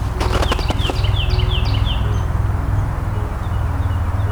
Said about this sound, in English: Hearing the triple ring of golden crowned kinglets as well.